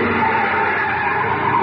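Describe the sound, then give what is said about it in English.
A car's tires screech loudly in a sustained skid, a harsh steady squeal lasting under two seconds as the car brakes to a stop. “Yeah, this is as far as we can go in the car.”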